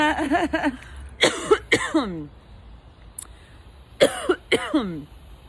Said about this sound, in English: It's super smooth. I haven't coughed yet. Oh. Coughed in the other ones. I just jinxed myself.